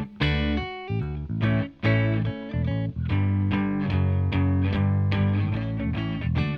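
A song by a kitchen band opens with its instrumental intro playing alone, with bright, harmonic-rich guitar chords strummed in a steady rhythm over a low bass line, staying loud and full throughout.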